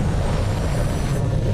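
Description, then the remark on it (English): A loud, steady aircraft engine roar as the engines come back on with the aircraft almost touching skyscrapers, a deep rumbling drone with a broad hiss on top, holding constant throughout with no voices. “Oh, they're almost touching the skyscrapers, and now the engines are back on.”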